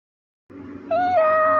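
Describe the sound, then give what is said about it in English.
A person does a single drawn-out meow, imitating a cat, fairly loud. A short breathy lead-in rises into a clear, sustained whining tone after a brief silence. “But let's listen to some of these meows.”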